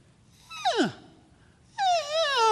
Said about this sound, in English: And that's the cow elk.